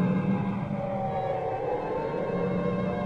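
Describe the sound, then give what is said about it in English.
A steady, wailing air raid siren sounds continuously over a dense rumble of street traffic at the entrance of an air raid shelter within sight of Nelson's Column, its sustained tone drifting slightly in pitch throughout, with no voices. “I'll just let you listen to the traffic and the sound of the siren for a moment.”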